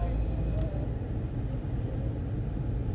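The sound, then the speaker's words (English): A car engine rumbles low and steady, a continuous idling drone with faint background murmur, as a car that has just pulled into the driveway sits with the motor running. “just pulled into the driveway and their phone connected to my car.”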